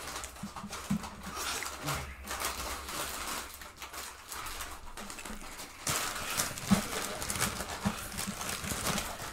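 A horse neighs amid a steady clip-clop of hooves, heard over a broad, noisy outdoor background with a few brief snorting bursts scattered through.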